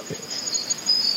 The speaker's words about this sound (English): Yeah, and these are the same crickets. Maybe not the same crickets, but these are the same crickets I used to record the sounding. Yeah, just for let, the yep. Just let it run for a second because it's a really rhythmic wave file.